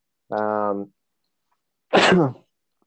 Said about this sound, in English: Bless you. Sorry. I hope not coronavirus. Hopefully not.